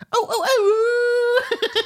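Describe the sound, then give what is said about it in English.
A coyote-style howl in a radio station jingle for the station now called coyote radio, loud: quick warbling yips rise into one long, steady held note lasting nearly a second, then break into short choppy bursts at the end. “Is that the pork howling? They just changed. Someone bought him out. It's the coyote radio now.”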